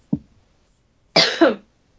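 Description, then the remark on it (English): A brief low throaty sound, then after a pause a loud, harsh cough in two quick bursts from a person at the tail end of a cold, rough and breathy across a wide range. No one speaks. “I'm at the tail end of a cold, and I might need to cough.”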